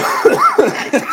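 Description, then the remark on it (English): A person coming off a nasty illness has a short fit of coughing: three harsh coughs in quick succession, fairly loud, with strained voiced breaths between them and no speech. “I can't stop coughing.”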